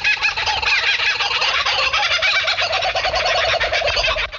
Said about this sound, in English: I hear macaws mouthing off like stockbrokers in the distance.